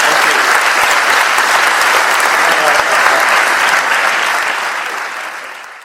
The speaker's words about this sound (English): Okay, well, just a round of applause for Asif Kapadia. Thank you very much.